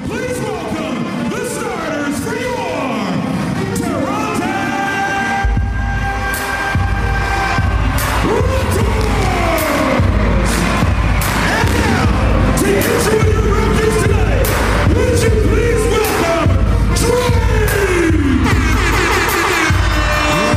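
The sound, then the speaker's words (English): A loud, packed arena crowd roars and cheers continuously at a Toronto Raptors playoff basketball game in Toronto's arena formerly called Air Canada Centre, with fireworks set off inside, booming bass-heavy music thumping underneath from a few seconds in and sharp bursts of noise cutting through the din. “And I've seen plenty of games of both the Toronto Maple Leafs and the Raptors, the best being playoff basketball. I've never seen an atmosphere like that, Smithy, and here is just a little taste of it.”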